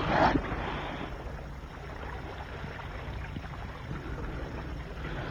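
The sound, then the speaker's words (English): Steady, wind-buffeted rumble of a boat out on open water, with a brief brighter splash-like burst at the very start and no voices. “Hey, it's 11 and I have to pilot this boat back to harbor.”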